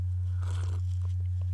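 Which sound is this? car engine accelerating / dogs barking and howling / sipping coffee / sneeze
sipping coffee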